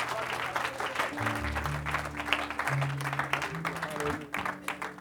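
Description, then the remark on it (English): An audience at Bendale applauds steadily for several seconds at an evening service, welcoming a preacher to the pulpit; a dense crackle of many clapping hands over sustained low organ or keyboard chords that shift pitch underneath. “Let's give him a good Bendale welcome to this pulpit again tonight.”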